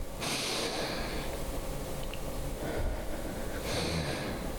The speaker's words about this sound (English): his breathing technique, which is, well, called the Wim Hof breathing technique, which is probably what you were trying to refer to.